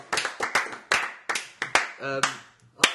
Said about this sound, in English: Roberto Martinez is going to get the little clap, the last clap of 2013.